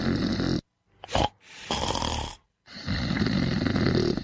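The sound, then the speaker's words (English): Loud, rough snoring, several harsh rattling breaths separated by short silences, with a sharp snort partway through. “Snoring. It's not funny, and it's definitely not normal.”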